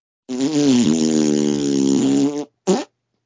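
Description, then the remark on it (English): A loud fart sound effect: one long buzzy, wavering blast lasting about two seconds, then a brief pause and a short final toot. No one speaks. “More powerful than explosive diarrhea. It's Farting Butthole Man.”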